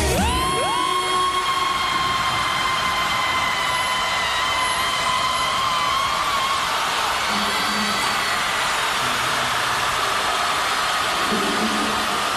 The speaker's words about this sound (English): we've all been practicing our longest and loudest scream. Okay, are you all ready? Here we go.